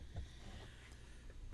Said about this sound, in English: Excuse me. And I said, hopefully that'll be the last cough.